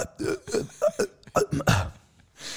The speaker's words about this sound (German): Ich habe gerade bei dieser Einleitung musste ich währenddessen so rülpsen. Und da gerade, kennst du das, wenn man so in einen Rülpser reinredet? In den Rülps durchredet.